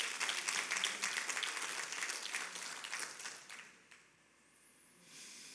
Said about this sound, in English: If you believe that, I want you to give the Lord a hand clap of praise.